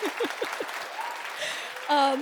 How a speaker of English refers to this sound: And the applause. Yay!